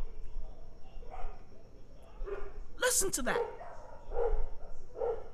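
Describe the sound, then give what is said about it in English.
Neighborhood dogs bark repeatedly in short, sharp bursts about once a second outdoors, with the loudest, clustered barks midway; a man speaks briefly over them. “These fucking dogs in my neighborhood are wildin'.”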